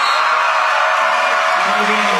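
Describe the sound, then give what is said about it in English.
A loud, sustained roar from a large basketball arena crowd during a free throw late in a close game, a dense wash of cheering voices that holds steady throughout without any single clear speaker standing out. “And cue the roaring crowd at this point.”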